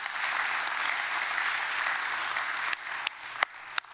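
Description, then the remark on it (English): An audience in a church applauds its elders, pastors and staff steadily in a dense wash of clapping, then it thins out near the end into a few scattered, sharper individual claps. “And I think you ought to give them a hand clap of praise.”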